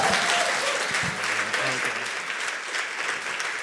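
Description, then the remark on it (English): A church audience applauds steadily as people who are about to be baptized make their way back to their seats, dense clapping filling the whole stretch at a fairly strong level, with a brief voice or two murmuring underneath early on. “And keep the applause going as these guys make their way back to their seats.”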